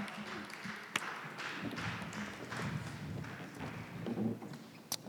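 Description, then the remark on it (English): Scattered, uneven hand clapping from a church audience as a sermon closes, thin and halfhearted, with a couple of sharper single claps standing out above a low murmur of shuffling noise. “I think the clapping is lacking. It's very, very weak.”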